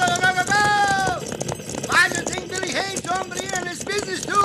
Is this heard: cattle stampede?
yes